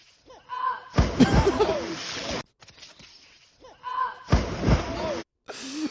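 Two heavy, booming thuds of overweight people falling, from a video, about three seconds apart, each a loud full-bodied crash, with short vocal cries or grunts around the impacts.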